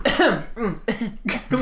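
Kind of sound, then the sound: human body sound, throat clearing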